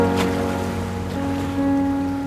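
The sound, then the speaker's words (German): A ferry's engine hums steadily with a low tonal drone while waves wash and splash around it in Hong Kong harbour water, a continuous rumble of a vessel moving through water. “Drachenboote, Sternenschiffe, Fähren.”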